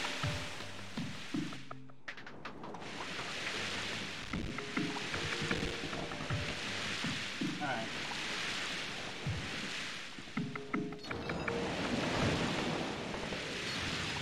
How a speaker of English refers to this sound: Oh, we're dodging the waves. They're, like, there's forward row and back row waves, so we just gotta dodge the rows.